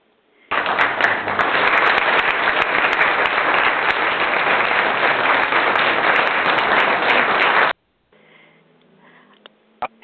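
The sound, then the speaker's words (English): A loud, steady burst of audience applause, dense clapping that starts abruptly and holds for about seven seconds before cutting off, followed by quieter low-level sounds, as a talk show audience welcomes actor Rafael de la Fuente as the special guest. “That was a really nice round of applause.”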